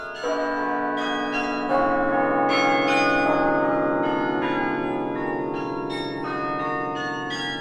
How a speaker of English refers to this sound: If you live, work, or study anywhere near the old campus of Yale University in New Haven, Connecticut, you get used to the sound of bells. They're coming from Harkness Tower, a campus landmark, and they're actually an instrument called the carillon